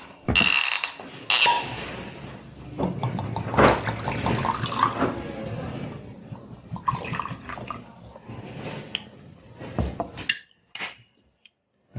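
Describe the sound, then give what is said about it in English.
Whiskey pours into glasses with a steady gurgling splash, accompanied by clinking glassware and small handling noises, moderately loud, ending in a couple of sharp clinks. “Would you care for a drink? I would indeed. Let's try this whiskey.”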